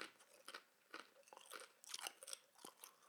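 Crunchy chewing with repeated bites and brittle crackles in an irregular rhythm, fairly loud, with no talking.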